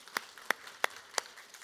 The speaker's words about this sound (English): Can we give them another round of applause for that?